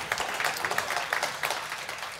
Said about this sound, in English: Either way, I must submit myself to the powerful hands of my God. Now you can clap.